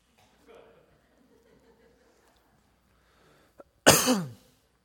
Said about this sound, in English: Let me also mention briefly that I'm getting over a little bit of a sore throat, so might be a lot of coughing and throat clearing as I work my way through this two-hour sermon.